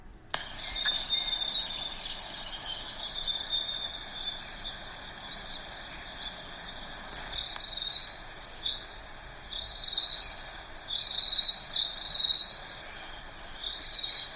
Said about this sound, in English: this week, and this one is a New Zealand grey warbler. Here we go, let's hand it over to a grey warbler.